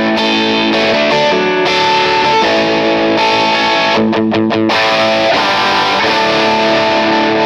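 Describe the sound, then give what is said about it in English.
A driven electric guitar through an AC30 amp preset with top boost plays loud, chiming overdriven chords and a brief burst of quick repeated stabs, with a bright, growling amp tone sustaining throughout and no one talking. “The little top boost.”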